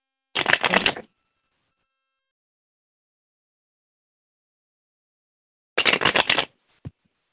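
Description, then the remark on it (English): A deck of cards is shuffled twice for a card reading, each time a quick riffle of rapid crackling flutters lasting under a second, separated by a long silence and followed by a single soft tap. “So what I want you to do is I want you to tell me when to stop shuffling, okay?”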